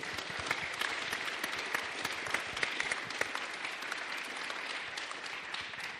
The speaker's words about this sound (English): All right. Can you give them a round of applause for me, please?